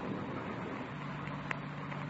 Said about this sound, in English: The car coming up the road toward us, sounds like. Yeah. Wait a minute. Coming over this way. Yeah, sounds that way, doesn't it?